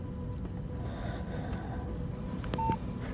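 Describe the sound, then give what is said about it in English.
A phone's sleep button on its right side is pressed once, giving a couple of quick clicks and a short electronic beep over a steady, muffled background rumble. “If that's true, squeeze that button. Make it the smallest movement possible.”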